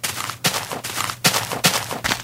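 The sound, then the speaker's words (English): Video game skeletons shooting arrows from their bows: a quick, steady series of about five sharp, snapping twangs, evenly spaced under a constant low hum, with no talking. “I hear arrows. Yeah, there's skeletons shooting at us.”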